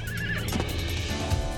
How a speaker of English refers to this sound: Then, one day, Patterson's horse whinnied and reared back on its hind legs.